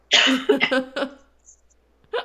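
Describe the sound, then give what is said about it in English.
A short burst of coughing, with several quick, husky coughs in a row, then a pause and one more faint cough at the end. “Sorry, I had to cough, and I really wanted to save you all from it, and I don't know if I did.”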